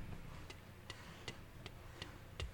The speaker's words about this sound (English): Before the phase stone can hit his nose, bloodstream pumping with the drug he craves so dearly, he feels less than sees or hears the ticking of the clock.